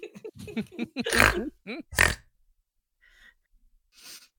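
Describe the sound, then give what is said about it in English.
A pig oinks and grunts in a quick run of short calls, with two louder snorting squeals, then a pause and a few faint snuffles trailing off. “Hoping that the pig will stay put near Galen. The pig follows you.”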